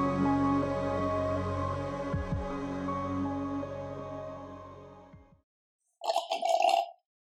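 A steady, humming tonal bed fades out, then after a short silence comes a brief, bubbly slurp, like a milkshake being sipped through a straw. No one speaks.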